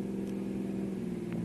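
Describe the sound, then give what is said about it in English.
A car engine drones steadily as the vehicle drives along a road, a continuous mid-pitched hum with no change in speed, fairly loud with no voices. “Stop the car.”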